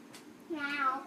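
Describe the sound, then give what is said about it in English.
A person imitates a cat with a single drawn-out, rising and falling meow, clear, preceded by a brief faint breathy sound and no other talk. “Is that I love you in cat?”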